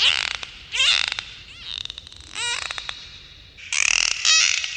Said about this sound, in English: And they use clicks for echolocation, 回声定位, using sound waves to find food or know where they are.